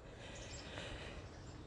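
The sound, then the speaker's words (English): Steady rushing water of a creek fills the background with a continuous hiss, while a few faint, high bird chirps flicker briefly above it, heard on a walk. No one speaks. “So, hopefully you can hear the birds, a bit of the crick.”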